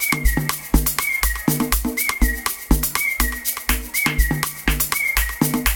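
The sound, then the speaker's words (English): A whistle blown at a dance gives short, shrill, steady-pitched blasts that repeat about once a second, locked to the beat of loud, bass-heavy dance music with punchy drums. “Anytime you hear that whistle in a dance, it's guarding.”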